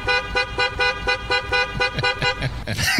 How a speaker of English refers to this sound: And last but certainly not least, great moments in honking, quite possibly the greatest horn of all time from Caddyshack.